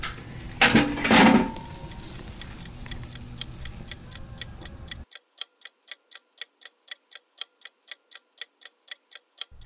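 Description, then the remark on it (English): A pot lid clanks shut with a couple of loud metallic knocks, then a kitchen timer, set for 1 hour, ticks steadily and rapidly, continuing on its own as the background noise drops away. “Let's close the lid and set a timer for 1 hour.”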